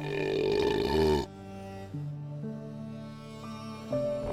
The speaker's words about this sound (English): I belched once more and grinned.